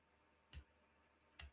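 Sharp clicks of a vape mod's fire button being pressed to lock the device, spaced almost a second apart, each with a soft low thump, against a quiet background with no talking.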